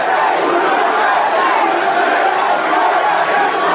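A large crowd at the Young Black Leaders Convention cheers and shouts wildly after Trump announces that an arrest has been made in a case, in a dense, continuous roar of many voices, loud and steady throughout with no single voice standing out.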